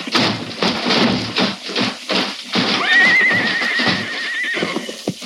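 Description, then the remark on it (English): Out-of-control horses whinny loudly while hooves clop in a rapid, uneven rhythm, with one long, high neigh sustained over the middle of the scene. “Rein in your horses. The horses are out of control.”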